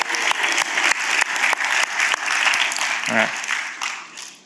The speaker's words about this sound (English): Everybody clap for my son Zion.